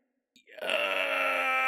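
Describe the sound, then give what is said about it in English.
A human voice imitates a Bigfoot screaming in pain down a dark cave: after a brief silence, one loud, sustained, strained cry swells up and holds steady, rich and buzzy with overtones. “They hear the sound of this Bigfoot screaming in pain down this dark cave.”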